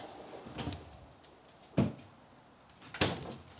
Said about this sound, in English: Hang on. I got to get into my refrigerator. I forgot to get the prop.